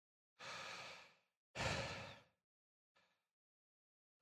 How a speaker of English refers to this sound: I received a voice message. I was getting bored of the game. So I dropped out to the dashboard and opened the message. It was heavy breathing for a few seconds.